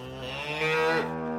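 A Highland cow gives a single long, low moo with a rich, buzzing tone that swells louder in the middle before easing off. No one speaks.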